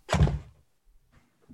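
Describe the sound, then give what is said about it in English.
An office chair that was too high is lowered: a sharp thunk with a brief airy burst, then a couple of faint creaks or clicks as the seat settles. No one speaks. “I'm just changing levels. Well, I'm trying to get into this mic a little better, but my chair was too high.”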